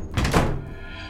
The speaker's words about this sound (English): Jessica and I were walking through the hallway when all the doors slammed shut at once.